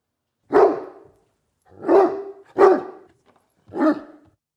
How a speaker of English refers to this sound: That's right, we've got a dog barking because I don't even know what's coming. We didn't have any other ideas for this. The dog means absolutely nothing. Please don't listen to it.